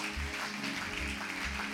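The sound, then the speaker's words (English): An audience claps together as a clap offering to Jesus, a dense, steady wash of many hands that holds at an even loudness for the whole moment, with a low sustained hum underneath and no voices. “Come on, give a clap offering to Jesus.”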